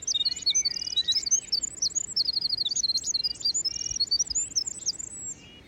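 A tiny winter wren sings nearby, a long, unbroken stream of rapid, high-pitched trills, whistles, halftones and overtones, tumbling and bubbling without pause over a faint, steady background hiss.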